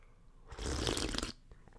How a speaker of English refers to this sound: It is 8:37 p.m. and you just heard me sip a cup of black Cafe Bustelo. Bustelo. Because I love it.